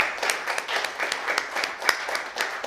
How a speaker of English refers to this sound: All right, how about a round of applause for all of you?